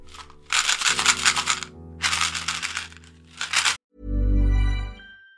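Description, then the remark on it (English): Dry, rattling bursts from small chewing gums shaken inside a little box, three loud rounds of clattering separated by brief pauses, followed by a low, muffled thump-like sound at the end. “So I'm going to shake these chewing gums and you're going to hear an advert for something.”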